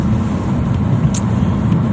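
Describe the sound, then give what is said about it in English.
Steady low rumble of a car driving to work through heavy morning city traffic at Carlaw and Lakeshore, with engine and road noise filling the background and a brief faint hiss from passing vehicles. “this morning, as I'm driving into work. I'm just down at Carlaw and Lakeshore.”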